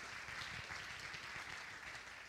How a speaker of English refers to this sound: If you're excited about that, clap your hands to the Lord.